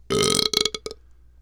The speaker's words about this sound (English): 5.5, 6. My burp last week was so much better, and you gave it like a 3.